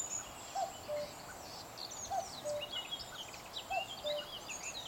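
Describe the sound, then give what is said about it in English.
Blackcap song amid a busy outdoor bird chorus: quick high warbles and chirps, with a short lower phrase repeating three times at an even pace, no voices. “It's black caps.”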